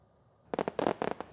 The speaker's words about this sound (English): Let's turn the sound way up. These are my fireworks. Yeah, all right.